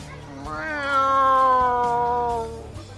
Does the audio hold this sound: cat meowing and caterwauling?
yes